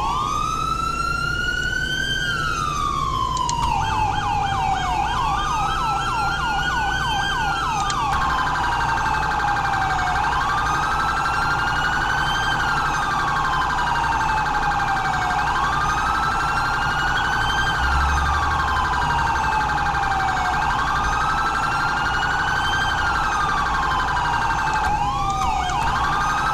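A loud siren demo of a San Andreas State Police Charger police car in a video game wails continuously, shifting from quicker sweeps into long, slow rising and falling cycles, layered with a steady electronic tone, with no voices.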